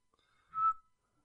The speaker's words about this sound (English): Well, I feel like I try to whistle that song, and then halfway through it mixes with some other kind of jingle, and I can't get to the end.